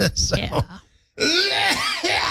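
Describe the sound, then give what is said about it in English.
A person makes a deliberate, staged fake cough: a short rough burst, a brief silent pause, then a longer harsh throaty hack with a voiced, strained quality. “That was just a fake cough to give you an idea of what it may sound like if I do indeed go into a coughing fit.”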